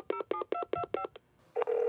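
A quick run of six touch-tone beeps as a phone number is dialed from memory, evenly spaced and clear, followed by a brief pause and then a steady electronic tone as the call rings.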